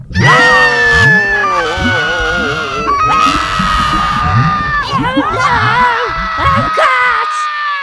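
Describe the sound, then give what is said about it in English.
A family screams loudly together, several voices in overlapping wails and yells of different pitches that sustain and swell for several seconds, raucous like a small group shrieking at once. “Can we scream, Dad? As a family, though I don't have the lung capacity to do so.”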